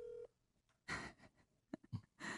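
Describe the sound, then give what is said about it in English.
A phone being dialed to make a call: a brief electronic keypad tone at the start, followed by a few bursts of handling noise and clicks. No one speaks. “You know what? I'm calling Lisa.”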